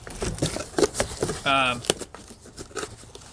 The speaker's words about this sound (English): And I hope you like the sound of the cardboard being torn via my cell phone's microphone. Because you're gonna hear it a lot.